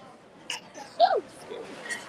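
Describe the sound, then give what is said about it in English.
A single short sneeze bursts out, brief and moderately loud, amid quiet background noise with faint scattered sounds before and after. “Bless you.”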